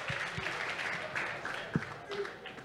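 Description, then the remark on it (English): A crowd at a live event applauds steadily throughout, a dense wash of clapping mixed with cheering and murmured voices, at moderate volume with a few sharper claps standing out. “We got a great crowd. Look at that.”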